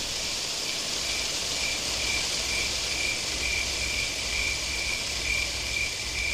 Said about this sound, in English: We live on a rural country lane, and the start of autumn has the nights growing cool. I open the windows and a smoky breeze fills the room. The last hum of crickets in the distance, rustling trees.